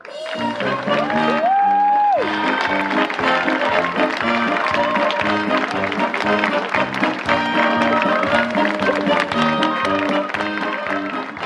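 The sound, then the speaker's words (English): A crowd breaks into sustained applause and cheering for honorary cast members beginning their jobs, loud and steady for several seconds, with upbeat music playing over the clapping throughout. “Please join me in giving our honorary cast members a big round of applause as they officially begin their dream jobs.”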